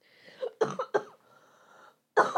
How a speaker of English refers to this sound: I'm sorry, guys. I have recovered from my sickie from last episode. I just have a lingering cough.